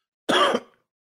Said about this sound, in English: Sorry for the coughing in your ear.